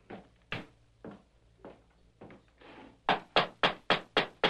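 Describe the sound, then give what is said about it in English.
Scattered dull thumps and shuffles, then a steady series of about six firm, evenly spaced knocks on the wooden door of a ranch house, fairly loud, with no voices. A masked man and his companion have dismounted from their horses and are knocking. “The masked man and the Indian dismounted and knocked on the door.”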